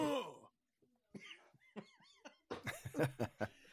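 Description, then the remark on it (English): A gravelly, exaggerated growling voice, imitating a wrestler, breaks off into a burst of harsh coughing, several rough hacks in quick succession with brief strained vocal sounds between them. “Anytime I try to do Macho Man, I start coughing.”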